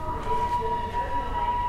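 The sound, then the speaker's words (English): A steady, high-pitched steam locomotive whistle holds one unwavering tone for nearly two seconds over a constant low rumble of engine noise, as the train departs Paddington Station. “We hear the engines whistle.”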